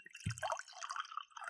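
Mead pours into a glass, with ginger being added for a small mead cocktail, a quiet, steady bubbling gurgle and a soft splash near the start, trickling on continuously with no voices.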